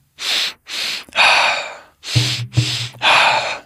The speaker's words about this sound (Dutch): En dan starten we zo meteen alweer de laatste ronde van deze bewuste en verbonden ademhaling. In 3, 2, 1.